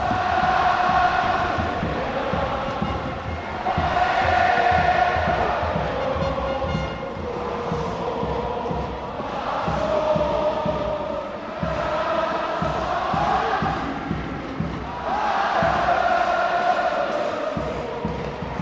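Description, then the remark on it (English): A large crowd in a tennis arena roars and cheers continuously, swelling in loud rhythmic waves every few seconds, like chanting surges rising and falling, as France clinches the Davis Cup final with a 6-love final set against Steve Darcy. “These are extraordinary, extraordinary scenes, and I've officially run out of words to describe this incredible crowd.”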